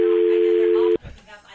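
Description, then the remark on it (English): A steady, loud telephone busy tone after a dropped call hums alone for about a second, then cuts off abruptly, leaving faint background noise and a hint of voices. “Our apologies to anyone that we just hung up on, and I think there's been a few.”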